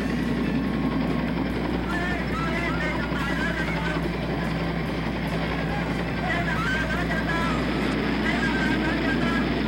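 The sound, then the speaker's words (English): A loud, steady helicopter roar with a low pulsing engine drone, continuous throughout, with a jumble of voices shouting beneath it; a helicopter in the chaotic US evacuation from Vietnam, with US-supporting Vietnamese clinging to helicopters to escape the Viet Cong. “And in the wake of those scenes of chaos, the U.S. supporting Vietnamese clinging to helicopters, hoping to be saved from the triumphant Viet Cong,”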